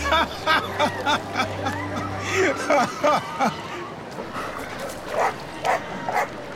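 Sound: dog barking and yipping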